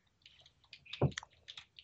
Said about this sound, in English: So what are you eating? I eat banana.